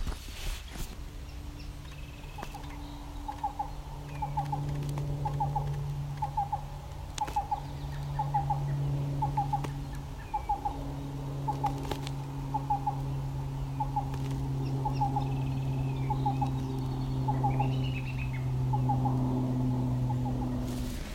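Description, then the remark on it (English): A black-billed cuckoo, sitting in the open, sings a steady series of short, clipped mid-pitched notes, often in quick pairs, repeated evenly for the whole stretch over a continuous low droning hum. “He or she, I'm not sure, just the male singer, male and female.”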